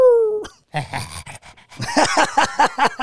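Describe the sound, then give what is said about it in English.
A small dog whines in a high, falling whimper, then breaks into a quick run of short, excited yips and panting sounds, fairly loud. “Aw, look at the little doggy. Doggy. Oh, a little smiley little doggy.”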